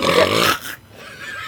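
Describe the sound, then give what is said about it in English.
A sleeping dog snores with one loud, rough, raspy snort that fades into quieter, airy breathing. No one speaks. “She keeps making those cutesy noises in sleep.”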